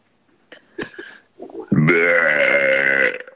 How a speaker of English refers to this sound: Oh, I just scared the dog. I burped in his face.